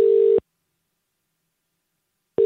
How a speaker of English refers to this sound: Is the ringing quieter if I turn that down, or does that have no effect whatsoever?